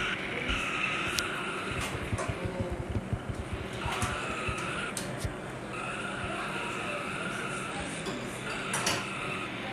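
The number 19 race car does a sustained burnout: loud, continuous tire squeal over a rough, rumbling engine roar, with gritty crackles and scraping bursts throughout.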